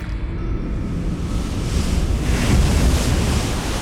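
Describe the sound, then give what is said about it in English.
A loud, continuous rush of surging water, like heavy surf churning, as a huge serpent erupts from a dark pool of water; it swells stronger a little past the middle before easing slightly, with a windy roar underneath and no voices. “a serpent 10 times the size of the Wani erupted from the pool.”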